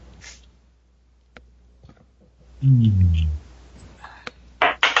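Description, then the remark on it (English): A six-sided die (D6) is rolled for ideals, clattering in a few sharp, scattered clicks, with a short low hummed voice sound in between and a brisker burst of clacks at the end. “Ideals is a D6.”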